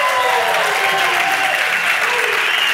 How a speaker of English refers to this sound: Yo hago todo el research, a él le dan el aplauso solamente por repetirlo en español. He gets all the applause just for repeating it in Spanish.